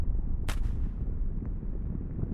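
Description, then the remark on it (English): A single sharp, loud blast of dynamite used on a mass of pure copper, followed by a heavy, lingering low rumble that slowly fades. No one speaks. “It just bends and folds, and dynamite isn't any better. It doesn't blow it apart, it just blows a hole in it.”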